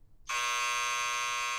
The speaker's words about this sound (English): Here's my buzzer.